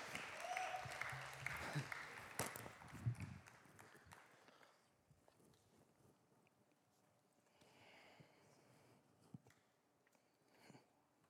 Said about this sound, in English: Man, can we give that worship band a round of applause, please? Man.